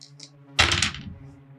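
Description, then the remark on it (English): A burst of hard clattering as dice are rolled across a table for a Dex plus Athletics check, difficulty 6, to grab a ledge in a tabletop game. Loud and brief, settling into a few faint ticks, with a steady low hum underneath and no one talking. “So just roll me a... Dex plus Athletics to grab a ledge.”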